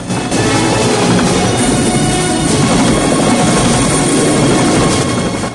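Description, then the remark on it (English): A loud helicopter roars steadily as it banks hard towards the tarmac, spilling smoke, and makes a rocky landing, its rotor and engine noise filling the whole stretch with a dense, rumbling chop and no voices. From a Rambo film scene. “Erickson's with Troutman and the HQ staff as the chopper makes a rocky landing.”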